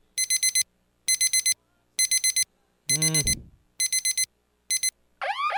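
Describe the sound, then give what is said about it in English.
An alarm sound effect bed: a loud electronic alarm beeps in rapid bursts, repeating roughly once a second, broken by a descending swooping tone and a rising warble at the end. No one speaks. “I just pulled up some random beds, so we're sounding the alarm.”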